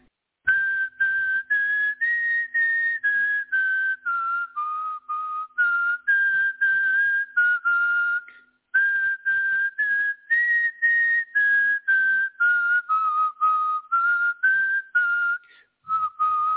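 A person whistles a pure, steady tone, almost a single narrow band of frequency, in a long series of short, closely spaced notes, the pitch drifting gently up and down across the phrase, clear with no talking.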